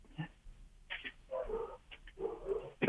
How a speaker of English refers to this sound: Sound like you got some interesting dogs. Yeah, they're excited.